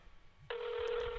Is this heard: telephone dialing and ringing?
yes